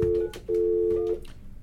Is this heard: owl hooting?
no